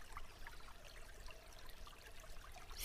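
A babbling brook flows steadily, with continuous gurgling and trickling water that stays even and unbroken throughout, soft, with no voices.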